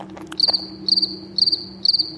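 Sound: crickets chirping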